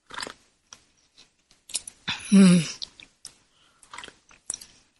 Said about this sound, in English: And I need to take a sip of my tea here.